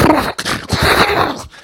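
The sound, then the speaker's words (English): Someone imitates a horse snorting: a quick run of loud, rough, breathy blasts through the lips and nose, a few bursts tumbling into each other with no words. “And it literally means to snort like a horse.”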